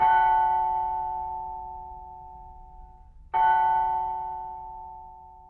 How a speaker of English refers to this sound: Well, we take an original bell and digitise the sound of the bell. Digital systems are what computers run on. And then the computer plays this digital system back, converting it back to real sound, so we get the sound of the real bell.